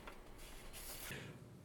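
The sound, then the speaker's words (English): Camera shutter clicking twice in quick succession as a photographer takes photos, soft, with crisp mechanical snaps against a quiet background and no talking. “the clicking noise in the background is our photographer, Amanda, taking photos”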